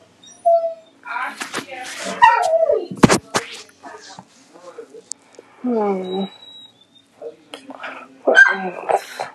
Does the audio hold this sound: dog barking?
yes